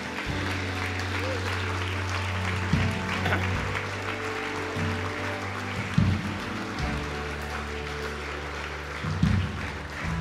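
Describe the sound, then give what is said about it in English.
A crowd claps and cheers steadily for about ten seconds, a dense wash of applause with a few louder bursts, over a low sustained hum of music, cheering people who have just relocated as they step out of their seats to be prayed for. “So if you've just, come on, let's give these guys a cheer as well.”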